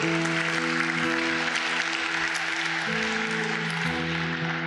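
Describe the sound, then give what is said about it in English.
An audience claps steadily and loudly throughout, a dense continuous wash of many hands, with sustained keyboard or organ chords ringing underneath and shifting a couple of times. No one speaks. “Yes, we should clap for that.”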